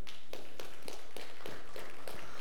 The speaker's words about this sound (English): Now, I'm a golfer, so I love golf claps, but that's weak sauce.